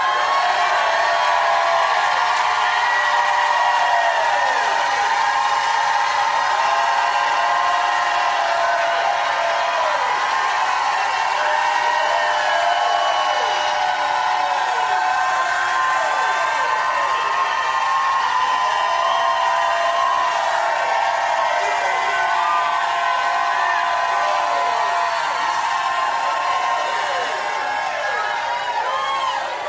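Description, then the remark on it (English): A large audience shouts and cheers together in a dense, sustained roar of overlapping voices, with rising and falling cries and whoops that stay loud and steady for the whole half minute. “Now, if you believe it, jump up and shout like you never shouted in your life.”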